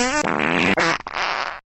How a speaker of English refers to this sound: Now, listen to some fart noises.